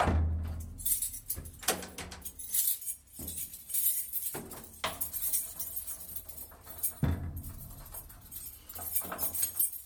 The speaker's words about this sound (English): is now closing the door. I am.